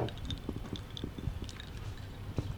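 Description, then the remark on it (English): Quiet sipping of strong cocktails by women after a toast, with soft wet slurps and small liquid clicks coming in an irregular patter and no talking. “Be careful. You sip it slow.”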